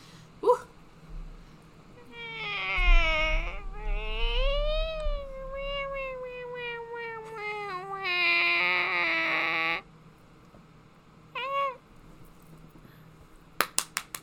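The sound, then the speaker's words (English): A person imitates an angry cat with long, wavering yowls and rising and falling growling meows that are loud, followed by a brief yelp and a few sharp clicks at the end. “Oh, I was thinking a bit of an angry cat.”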